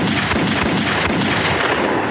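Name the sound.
gunshot sound effect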